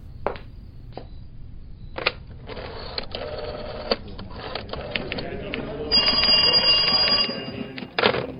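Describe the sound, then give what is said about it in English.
Crisp mechanical clicks and whirring of a wall telephone in a kitchen being dialed to call a tow truck, in uneven bursts, followed by a brief stretch of ringing tone before the clicking resumes. “can I use your phone and call a tow truck?”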